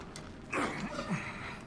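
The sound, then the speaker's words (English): A heavy, stuck wooden door groans and creaks as it is lifted upward, a short strained scrape with a couple of rising squeaks. “The door is stuck. You'll have to lift it.”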